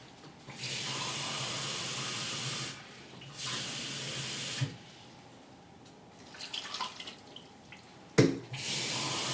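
Water, 3.5 cups in all, gushes steadily into a cooking pot to cover the ingredients, in several bursts, starting and stopping with brief pauses between, loud, ending with a clunk and another rush of flow.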